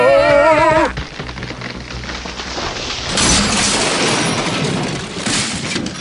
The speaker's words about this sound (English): See, Mr. Bell, that tree just happened to fall at that moment and crash through the wall and knock all the villains out cold. What are the odds? It must be fate.